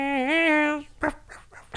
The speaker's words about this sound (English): Puppy dog.